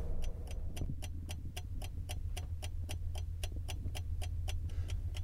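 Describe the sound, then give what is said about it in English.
Rapid, steady clicking from a vehicle's lights flashing on and off due to a minor electrical fault at 1 a.m., about three or four crisp ticks per second, over a constant low engine rumble. “It is 1 o'clock in the morning, and we appear to have a minor fault with the electrics, inasmuch as the lights keep flashing on and off, and you can hear them going click, click, click, click, click, click.”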